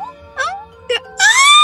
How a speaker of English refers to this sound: I shouldn't be screaming because maybe it could be like, you know, a bystander, whatever.